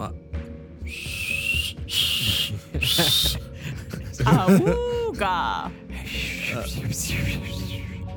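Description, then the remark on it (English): Someone imitates a whistle with their voice, making several breathy, high-pitched blasts in a row, followed by a warbling, wavering tone, all over faint background sound. “What does your whistle sound like?”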